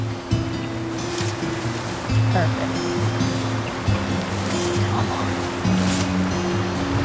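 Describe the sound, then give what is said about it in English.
Steady rushing of flowing river water as a person wades into the river to go fly fishing, continuous, with occasional swells of splashing and a low droning hum underneath. “We're actually getting to wade into the water now”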